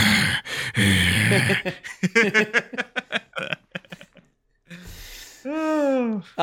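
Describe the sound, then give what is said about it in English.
A voice imitates Mel Gibson's heavy, raspy breathing into the microphone, with loud rushing breaths, a string of short choppy gasps, a brief pause, then a drawn-out wheezing exhale. “Mel Gibson breathing into the mic on his like.”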